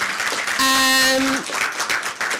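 An audience claps in a steady, dense patter for a couple of seconds, with a brief sustained tonal note, like a horn or a voice's whoop, sounding over the applause partway through.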